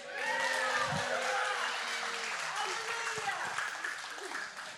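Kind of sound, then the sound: crowd, audience clapping and cheering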